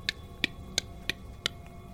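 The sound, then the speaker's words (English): Many clocks ticking in a steady, quick rhythm: five crisp, bright ticks and a fainter sixth, clear over a low background hum, with no voices. “All the meanwhile, you hear a cacophonous tick-tock, tick-tock. A thousand different clocks all ticking away.”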